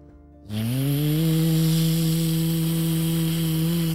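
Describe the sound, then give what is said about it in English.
A loud vacuum cleaner switches on after a brief quiet moment, its motor winding up to a steady, droning whine with a rushing hiss of air that continues without a break. “As Jasper turned on this very noisy vacuum, it sucked onto the side of Harmony the Unicorn and pulled her right out of the quicksand.”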